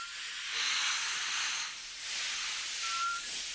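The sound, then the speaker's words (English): A dense, continuous hiss of thousands of snakes of every size and shape, breeding beneath a bridge over a ravine, rising and falling in two broad surges with a faint thin whistle near the end. No voices are heard. “Every size and shape of snake known to man. Thousand upon thousand of them, all breeding happily, waiting for their next feast day to come along.”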